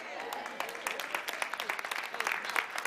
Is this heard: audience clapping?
yes